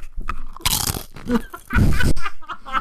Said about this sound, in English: Okay. So we just set down the rustly plastic bag full of tortilla chips next to the microphone.